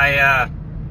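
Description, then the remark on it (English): A steady low rumble of a car interior while driving toward South San Jose, a voice sounding briefly at the start before the engine and road hum carries on alone. “So I'm in the car.”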